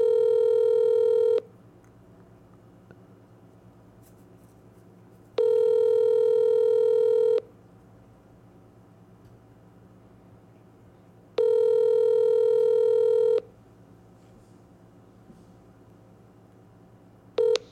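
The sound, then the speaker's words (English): An outgoing phone call ringing unanswered before being forwarded: three long, steady mid-pitched ringback tones, each about two seconds, separated by four-second pauses, with a fourth just starting. No one speaks; a low hum lingers underneath. “we tried to call you, dog.”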